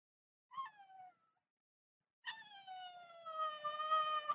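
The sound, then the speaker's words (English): A cat meows twice: a short falling meow, a pause, then a longer, drawn-out wail that swells louder toward the end. No one speaks. “If you stop torturing the cat, I promise I'll do the podcast with you.”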